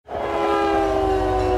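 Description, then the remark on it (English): A freight train horn blares in a steady, sustained tone over a deep, continuous rumble of rolling rail cars, heard from inside a boxcar, loud, with no voices. “This is what it sounds like inside the boxcar.”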